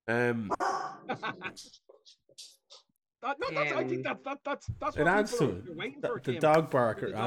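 A male dog barks loudly, a strained opening bark followed by short scattered yips, then a longer stretch of insistent, vocal barking and whining.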